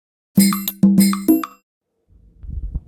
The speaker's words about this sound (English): Now my phone's ringing. Hold on.